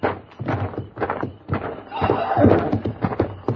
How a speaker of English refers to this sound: Wait a minute. Listen. The horses, there's somebody out there.